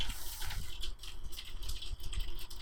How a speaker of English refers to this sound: It's actually hailing, like. Yeah, that might be a little loud, but yeah.